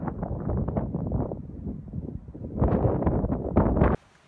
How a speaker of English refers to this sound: And of course the sound of the sea is a constant backdrop.